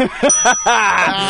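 A substitute bell rings with a bright, sustained high tone that lingers through the whole moment, while voices chatter and laugh over it.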